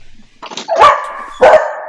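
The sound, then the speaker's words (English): A dog barks twice, loud, the sharp barks spaced about half a second apart with a faint lead-in before the first. “Gotta love dogs.”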